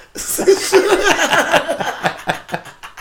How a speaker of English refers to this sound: What was that? Oh, I sneezed. I don't like to hold it back because my eyes might pop out.